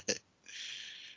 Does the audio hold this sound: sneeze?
yes